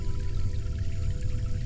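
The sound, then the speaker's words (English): A glowing gold liquid pours onto someone's lips in a steady, continuous stream for under two seconds, a soft trickling wash with a low rumble beneath it and no voices. “Once it was glowing gold, she poured it on Shelby's lifeless lips.”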